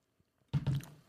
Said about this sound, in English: Let me get a sip of water.